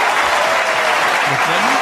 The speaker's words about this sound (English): Is it just me, or does that cheers button that I have kind of sound like the car crash in the beginning?